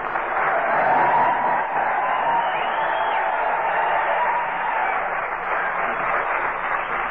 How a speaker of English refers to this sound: Here we are at Old Camp Talon. All right, boys, come on, start yelling.